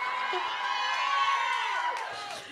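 A live audience screams and cheers loudly and continuously, high-pitched shrieks layered over a dense crowd roar that holds steady before easing slightly at the end.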